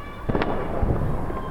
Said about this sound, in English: but as fireworks lit the sky above Tehran, the chanting began. Calls echoing through the night from open apartment windows.